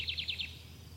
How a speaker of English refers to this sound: Notice your surroundings by just listening to the beautiful sounds around. Once again, those birds, the fresh air, the green lushes.